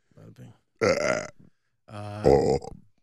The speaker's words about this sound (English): I mean, I can burp on command, but not good ones.